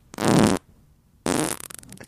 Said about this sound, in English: Jesus Christ. That's dude. My fart, dude. That's my fart.